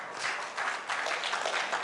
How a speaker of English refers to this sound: All right. I think an applause is very, very good to have right now. Better than booze.